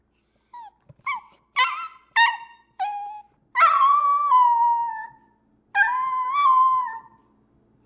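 A dog lets out a string of short, whiny yelps, then two long, wavering howls, fairly loud with no other sounds around it.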